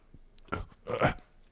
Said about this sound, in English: Excusez-moi, I was just a little bit burping.